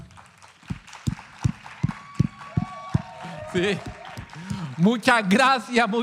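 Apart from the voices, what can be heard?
audience applause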